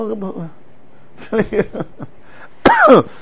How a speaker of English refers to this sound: Wow, I should cough more often this year, huh?